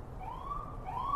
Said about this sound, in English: here we go. This fucking ambulance probably had the Meth Mile.